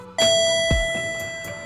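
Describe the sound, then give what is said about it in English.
An elevator arrival chime, as the doors open, rings out as one bright, steady tone that sustains and slowly fades, with a few soft mechanical thuds underneath and no voices. “Stepping into the elevator today is LA's own ….”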